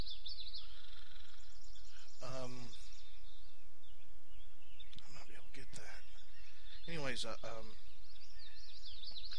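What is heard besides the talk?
many birds chirping outdoors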